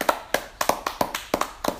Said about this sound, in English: Round of applause.